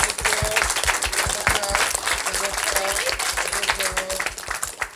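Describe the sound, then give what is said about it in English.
An audience breaks into sustained applause for a film crew, dense clapping with scattered cheers and whoops rising above it, steady and loud for the whole stretch. “And it's thanks to him that we have this beautiful crew here filming us who deserves a round of applause.”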